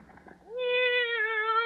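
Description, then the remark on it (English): A single long, drawn-out meow from a female cat named Minerva, just let out of a bag, rises quickly and then holds steady and fairly loud, after a brief moment of soft, muffled background noise. “Oh, well, then maybe my cat can hide out here for the day.”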